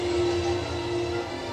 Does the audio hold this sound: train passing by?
yes